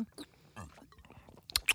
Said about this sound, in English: It's a citrus brew. That's what it says. I got to take another sip. Of course. We're all drinking.